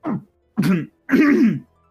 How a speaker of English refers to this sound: and as he, like, coughs, like, steam comes out of his mouth.